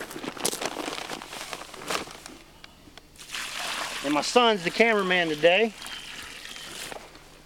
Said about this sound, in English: So what we're gonna do is we dug us a hole, and now we're gonna pour us a little mineral in it. And my father's gonna add some water.